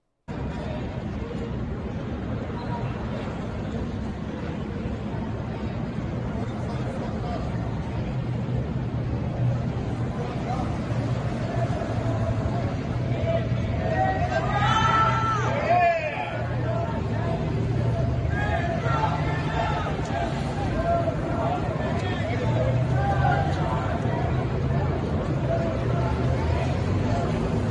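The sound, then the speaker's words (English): A crowd in New York cheers and claps steadily for a passing motorcade, heard from about 30 feet away, a dense roar of voices and applause, with a brief burst of louder, higher shouts and whistles where about half a dozen people chant 'New York hates you', under a constant engine rumble. “Same motorcade, but when you're looking at it in reverse, you hear people cheering for him, you hear the crowd applaud, and only at one very little tight segment do you have about a half a dozen people chanting, New York hates you.”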